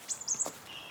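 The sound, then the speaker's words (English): Quick, high-pitched twittering from little wrens in the shrubs of the bush, a few short bright chirps and trills in a rapid run, fairly soft, with no voices present. “Oh, yeah, I can hear some little wrens twittering away in the shrubs.”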